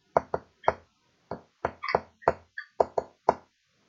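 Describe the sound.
About a dozen sharp, fairly loud taps land in a quick, patterned rhythm as a big-handed man raps a secret knock with his fingernail on a white door, with short pauses between groups.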